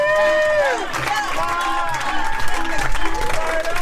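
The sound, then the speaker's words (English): A large crowd at a rally for Kamala Harris's husband roars and cheers with scattered applause, a dense, loud wash of voices and whoops, with a few raised shouts rising above the din. “And then we go to, of course, the exciting part, the possibly next vice president, and maybe, who knows, president of the United States talking to a huge, excited crowd.”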